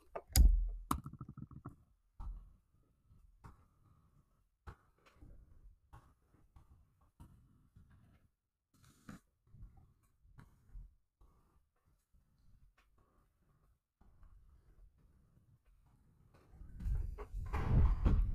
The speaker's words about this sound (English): The shallow keyboard. Personally, I love the keyboard. Just listen to the sounds of how lovely this keyboard is. You probably can't hear it very well, but here, just take a listen.